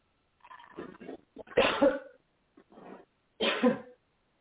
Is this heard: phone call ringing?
no